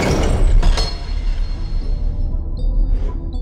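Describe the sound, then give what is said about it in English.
Great doors burst open with a loud, sharp bang and a clattering crash, followed by a low rumbling wash of noise and a brief airy whoosh near the end, with no voices. “Then the great doors burst open with a terrible bang.”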